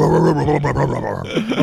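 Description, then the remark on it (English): A human voice imitates a bulldog voice coming out of Peter Boyle's body, with a loud, gruff run of throaty growls and snorting grunts, ending in a couple of rising, whiny yelps. “Think about how funny it is to hear the voice of a bulldog coming out of Peter Boyle's body.”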